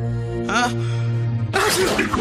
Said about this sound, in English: Bless you.